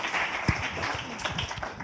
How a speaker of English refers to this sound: If you believe it, go ahead and give the Lord a great hand clap.